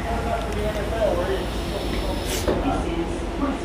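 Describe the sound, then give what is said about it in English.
Steady rumble of a train carriage in motion, boarded at Whitechapel in London around 11 o'clock on a Friday night, with faint murmuring voices underneath and a brief hissing whoosh partway through. “Jump on the train, guys.”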